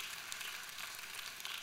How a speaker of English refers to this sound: We call that a golf clap. Because a lot of y'all didn't like that.